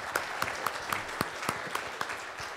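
Light audience applause, thin and fairly quiet, with about nine distinct claps landing in a steady, almost even rhythm, with no voices over it.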